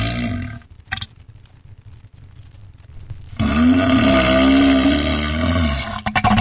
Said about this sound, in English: That sounded like a burp.